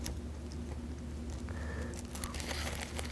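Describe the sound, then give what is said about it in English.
Faint, sharp clicks like a light switch being flipped, a few scattered taps over a steady low hum and a soft crinkly background, with no one talking. “That clicking you heard was the switch.”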